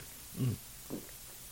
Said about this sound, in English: Loves to hear gulps. There they are. Yeah, I could cut the mic on that, but why? It takes away from the realism, right?